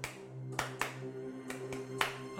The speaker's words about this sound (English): Claps. Claps.